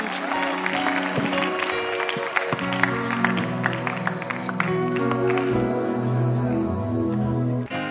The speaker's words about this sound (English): Put your hands together and celebrate Jesus.